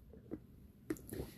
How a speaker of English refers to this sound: Sorry, I had to take a sip of water. Brought to you by water. Stay hydrated.